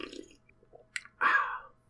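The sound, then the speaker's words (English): A short slurping sip of full-sugar Baja Blast soda from a can, preceded by a faint clink, with a louder wet draw of liquid lasting about half a second before fading out. No talking. “I haven't had a non-zero sugar Baja Blast in a while, and that really fucking hit me immediately. The first sip.”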